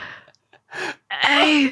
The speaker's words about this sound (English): All right, and with finally my last words I gasp out, I'm a gentleman.